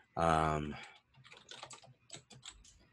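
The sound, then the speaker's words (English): A short loud vocal sound opens, then a computer keyboard clatters with quick, irregular keystrokes, moderately loud, continuing for a couple of seconds. “Get that keyboard going.”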